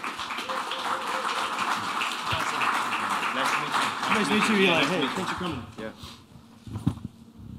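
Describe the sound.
A round of applause: a dense, steady wash of clapping hands with voices talking over it, fading out after about five seconds into quieter chatter.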